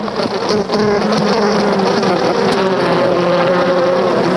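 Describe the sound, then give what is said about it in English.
A dense, steady drone of many honeybees buzzing together around a hive being gently opened by a beekeeper, a continuous humming swarm with wavering tones and no speech. “And we open the hive gently.”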